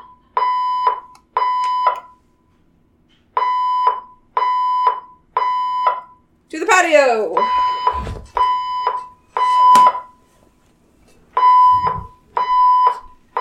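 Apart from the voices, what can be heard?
building fire alarm ringing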